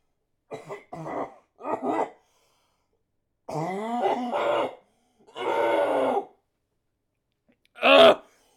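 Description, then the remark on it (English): A person clears their throat repeatedly: a few short rasps, then two longer gravelly, drawn-out hacks, ending with one sharp, loud cough-like burst. No speech. “I'm going to clear my throat as well.”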